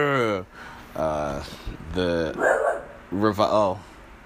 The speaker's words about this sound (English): I guess I scared my dog. He's not a fan.